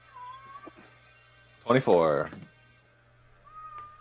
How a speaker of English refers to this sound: I'm going to need my cat to stop screaming.